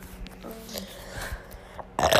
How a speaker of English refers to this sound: That was a really good burp. No, it wasn't. Yes, it was. It was.